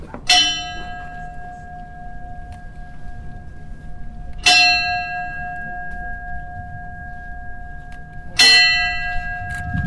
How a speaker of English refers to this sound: And the fire department bell that sounded 10 times for each one of the lives lost.